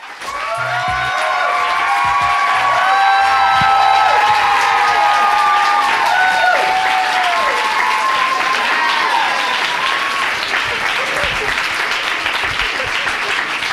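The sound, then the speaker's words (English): A live audience of fans cheers and applauds loudly and steadily at a book event with Janet Mock at the Strand Bookstore in New York City, with whoops and shouted voices rising over dense clapping that continues throughout. “And I was super excited to interview Janet about it at the Strand Bookstore in New York City in front of a crowd of her lovely fans, who you'll hear too.”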